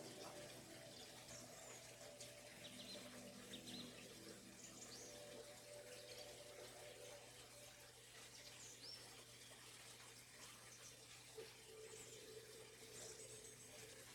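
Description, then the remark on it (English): Steady river water flows and rushes throughout, a continuous, even wash of sound at a soft level, with a few faint bird calls drifting above it. “It walks carefully down the bank of the river and takes a drink.”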